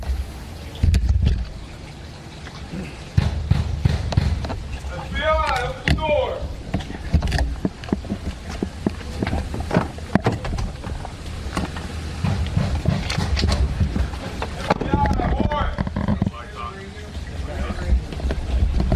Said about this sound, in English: There you can hear the FBI banging on the door of Roger Stone, yelling, FBI warrant, FBI open the door.